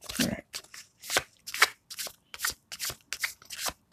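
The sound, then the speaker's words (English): Playing cards being shuffled for a card reading flutter, fall out of the deck and slap down in a quick, irregular series of crisp, papery bursts, about eight or nine soft riffling hits over a few seconds, with no voices. “Cars just falling all over the place.”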